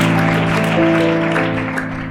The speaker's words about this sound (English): One more time, why don't we give a hand clap of praise